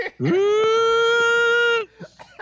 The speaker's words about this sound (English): You want to give us that scream again, because that's what... Oh, sorry. Do I need to do the whole sentence? No, just when you do the shriek, you do it. Yeah, that's good. That's a good scream.